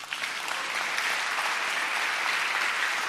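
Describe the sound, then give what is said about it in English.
Steady crowd applause fills the whole stretch, a dense, even wash of many hands clapping at once without any voices rising above it. “Now you can clap.”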